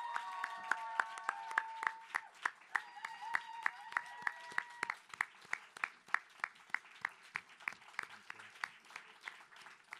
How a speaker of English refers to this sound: I want to first give a huge round of applause for our five performers.